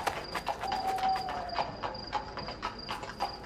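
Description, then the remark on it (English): A horse's hooves clip-clop through a hallway at a steady walking pace, a quick run of sharp knocks over a thin high-pitched tone and faint background hum. “Clip-clopping through the hallway.”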